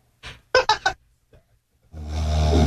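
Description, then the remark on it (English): Recorded snoring from a sleeping spouse: a few short, raspy snorts, a pause, then one long, rumbling inhaled snore that grows louder and coarser to the end. No one speaks. “I know it's only snoring, but I feel bad.”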